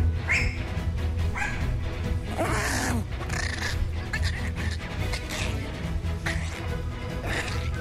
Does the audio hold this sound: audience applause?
no